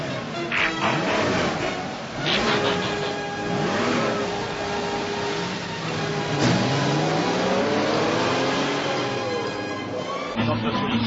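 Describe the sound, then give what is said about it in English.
Several car engines rev loudly and accelerate, their pitch climbing in repeated sweeps as they roar past one after another, filling the whole stretch with a steady mechanical growl. “Ironhide, Mirage, Sunstreaker, Sideswipe, Autobots, start your engines.”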